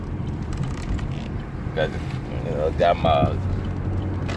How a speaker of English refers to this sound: Got my car windows down and just enjoying the air, because I live in Louisiana, Baton Rouge, Louisiana.